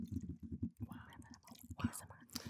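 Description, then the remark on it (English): Water sloshes back and forth inside a regular water bottle, a quick run of rhythmic gurgling swishes with a soft breathy hiss riding over them. “So I got my regular water bottle right here. ASMR.”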